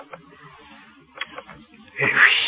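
A single cat's meow rises loudly near the end, close and drawn out, after a stretch of quiet with a few soft clicks and rustles.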